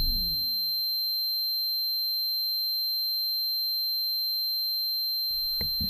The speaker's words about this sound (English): That ringing sound effect never gets old.